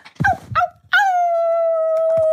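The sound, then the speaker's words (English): A person imitates a dog into a covered microphone, sounding muffled and muted: two quick yelping barks, then a long, steady, high-pitched howl held for over a second, loud, with no talking. “you're howling, …, but I think you were covering the mic, so it was a bit muffled and muted”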